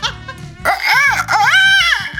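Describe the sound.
A person loudly imitates a rooster's crow, a strained, high-pitched call rising and falling in several arching swoops, following a brief murmur of low background sound.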